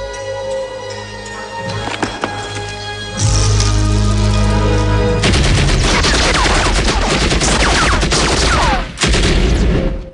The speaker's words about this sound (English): As Rambo fires an explosive arrow, Kurov grabs a comrade and uses him for cover. The explosion rocks the cave. A soldier startles Rambo, then gets shot.